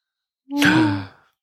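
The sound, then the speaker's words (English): A single breathy, voiced gasp, swelling quickly and trailing off after under a second, heard on its own with silence around it. “Gasp.”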